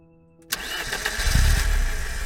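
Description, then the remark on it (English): A truck engine cranks and catches with a sudden burst, then settles into a steady, rumbling idle, with no voices present, as the truck, loaded with gas, water and food, sets off to leave Split Oak. “I loaded the truck with gas and packed the back seat with water and food and left Split Oak, winding down the drive, through the trees, and finally out of the complex.”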